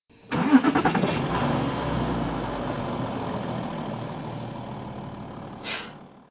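A car engine cranks with a few quick sputters, catches, then settles into a steady, rumbling idle, with a brief rise in noise near the end.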